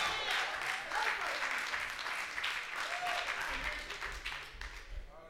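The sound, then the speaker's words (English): An audience at a church service claps and applauds in praise steadily throughout, a dense crackle of many hands with cheering voices and shouts mixed in, staying loud and even for the whole stretch. “If y'all ain't back there clapping, y'all gonna go sit up in the front.”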